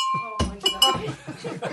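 A small bell, rung as a sound effect in a role-play game to signal approval of a couple's pillow talk, rings once with a bright, sustained metallic tone that slowly fades, quickly overtaken by loud voices talking and reacting over its lingering ring.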